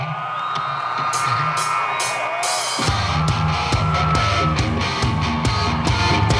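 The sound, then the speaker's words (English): A large concert crowd cheers and whoops loudly and steadily, then a rock band kicks in partway through with pounding drums and guitar while the roar of the crowd continues underneath. “They got a huge crowd.”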